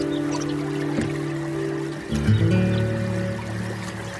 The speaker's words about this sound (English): All I can hear is a bird song, a lap of water as I paddle through this still river. The sun is just turning the banks golden.